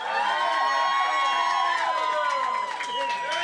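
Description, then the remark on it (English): An audience cheers and shouts loudly and continuously to vote for comedian Chris Estrada as the show's winner, many overlapping voices whooping and yelling in a dense, sustained roar with a few higher shrieks rising above it. “And then, if you think the winner should be Chris Estrada, make some noise.”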